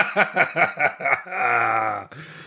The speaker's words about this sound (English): So they're all – this is this chicken coop.